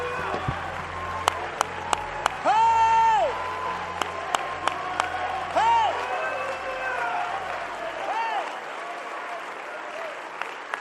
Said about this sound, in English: Put your Bibles down behind you if you can and clap your hands unto the Lord and shout to God with the voice of triumph.